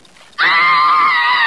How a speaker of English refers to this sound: Oh, there's a horse out there. Looks like Kentuck. Can barely see it in the snow. There's something, somebody tied across its back.